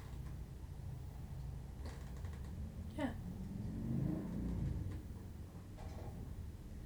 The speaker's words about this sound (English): To stop talking every time a motorcycle drives by? That was a weird lull.